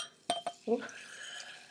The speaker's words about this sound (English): That's me pouring Ria glass. She's holding it right up to the mic.